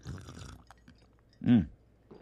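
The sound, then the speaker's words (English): A single short, wet slurp of iced coffee from a coffee mug, fairly loud, after a moment of faint sipping noises, with no talking. “And of course, our tradition is I have to slurp it.”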